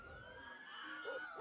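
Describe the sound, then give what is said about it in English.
An ambulance siren wails in a brief, loud burst, its steady tone climbing slightly in pitch. It sounds clear, with no one talking over it. “So, do you want to take a quick pause here? Insert ambulance.”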